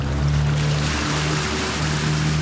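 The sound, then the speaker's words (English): A tiny fishing boat's outboard motor drones steadily at Valletta Harbour, its low engine hum running beneath a constant wash of water and splashing, with no voices. “No, it was a tiny little fishing boat with an outboard motor.”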